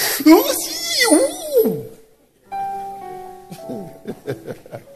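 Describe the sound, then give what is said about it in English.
A voice imitates a drawn-out yawn, its pitch sliding and wavering, followed by a pause, a sustained ringing tone, and then a few short vocal bursts. “And you are yawning away and sleeping away.”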